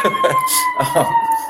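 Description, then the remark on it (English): Sirens wail steadily in the background as they go by outside, while a person speaks over them. “pardon me, I have sirens going by outside.”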